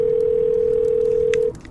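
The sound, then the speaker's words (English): A single steady electronic telephone ringing tone on an outgoing call, loud and sustained for about a second and a half before cutting off, leaving faint background hiss. “pick up the phone.”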